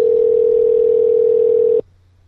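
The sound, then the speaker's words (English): A loud, steady telephone dial tone as a call is placed hums on one unbroken pitch for nearly two seconds, then cuts off abruptly into near silence. No one speaks. “Here goes the call.”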